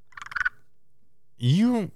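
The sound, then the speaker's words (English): An armpit squeeze noise, made by squeezing air out through the armpit: a quick burst of squelchy, clicking pulses, a short pause, then a loud, croaky, frog-like squeal that rises and falls in pitch before stopping. “I have a little hole in my armpit where I squeeze it out.”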